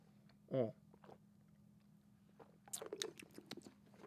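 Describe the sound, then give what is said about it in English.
A loud gulp near the start, then a run of soft wet mouth clicks and swallowing noises as someone sips water and swallows, with no talking. “Just got to take a sip of water.”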